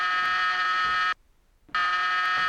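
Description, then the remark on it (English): A door buzzer sounds twice, each a loud, harsh electric drone lasting about a second, separated by a brief silent pause. No voices are heard. “I need you to tell this person to stop ringing my buzzer.”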